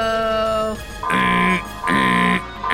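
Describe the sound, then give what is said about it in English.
A loud electronic wall alarm, pulled by a scientist, blares in repeating bursts, each harsh, buzzing tone lasting about half a second with brief gaps between, following a steady lower tone at the start. “Go ahead, and as the scientists are trying to make their way over toward this vault to follow orders, at this point, one of them pulls an alarm on the wall.”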